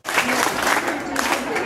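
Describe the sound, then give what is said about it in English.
Stranded Sunwing airline travelers, including British Columbians stuck in Mexico after a network-wide computer failure, clap in protest in a dense, sustained burst of applause, with faint voices mixed into the noisy patter throughout. “This is not a cheer. A polite Canadian protest as travelers' frustration reach a boiling point.”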